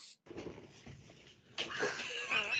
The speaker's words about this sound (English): We have a dog situation going on in the background right now. She doesn't want to go. What's the dog situation looking like?